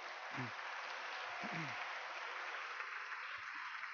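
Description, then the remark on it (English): Steady audience applause for Daniel Baldwin at a luncheon, a dense wash of many hands clapping at an even loudness throughout, with a few brief low vocal whoops or cheers rising out of it near the start. “Another round of applause for Daniel Baldwin.”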